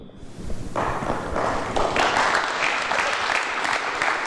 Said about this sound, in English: I don't know that that needed a clap.